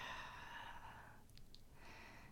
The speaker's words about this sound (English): let's really dive into some big, beautiful, deep diaphragmatic breaths, breathing in through the nose, filling the belly rather than the chest, and out.